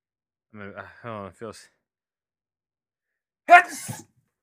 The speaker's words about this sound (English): So unprofessional. I just sneezed on air.